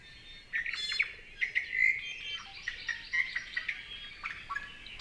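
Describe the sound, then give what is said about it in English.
A Kauai o'o, an extinct Hawaiian bird, sings a rapid series of clear, flutelike whistles and chirps, steady for several seconds with no talking. “Kauai o'o fed primarily on nectar of various native flowers, and the causes for their extinction were similar to those for many other native Hawaiian birds, and include habitat destruction and introduced predators and disease.”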